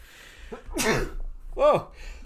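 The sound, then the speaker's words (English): A sudden sneeze: a sharp breathy burst, followed moments later by a short voiced, rising-and-falling vocal sound, with faint murmuring voices around it. “Sweet the sneezes.”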